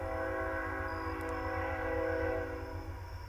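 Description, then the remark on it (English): A train rumbles steadily while its horn blares in one long, sustained, loud blast that fills the whole moment, with no voices present. “Well, as you can tell, the train went through, so I had to take a break and come back.”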